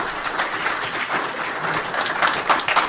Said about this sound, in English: That's why I love doing this program. It's the only time I get an applause.